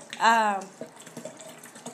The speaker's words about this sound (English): Excuse the sound of us pouring more wine.